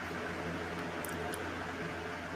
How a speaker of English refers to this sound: Somebody vacuuming. Vacuum.